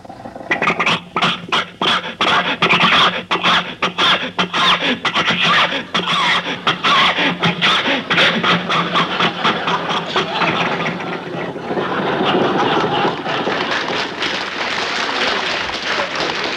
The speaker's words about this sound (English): Do you think your car will make this hill, Jack? Sure. Rochester, give it a little more gas. Okay.